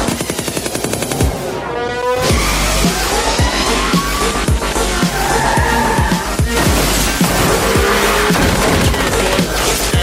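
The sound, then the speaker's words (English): Loud, busy sound effects added to 2-inch toy cars as they drive, drop bombs and shoot: whining engines rising and falling, squealing tires, and a rapid barrage of sharp crashes and bangs, with no talking over them. “I like how they added the sound effect on those 2-inch cars. That's really, you know, like big crashes.”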